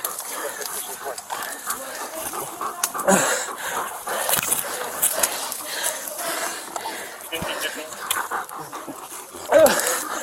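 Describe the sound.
A dog pants steadily over a noisy, rustling background, letting out a short high whimper near the end, with indistinct voices mixed in.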